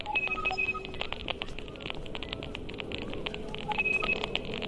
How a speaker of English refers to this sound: They use smartphones to capture the data and turn it into sounds. It's like a Geiger counter, but for Wi-Fi instead of radiation. Faster clicks mean higher Wi-Fi signal strength. And these robotic beeps are the router ID numbers.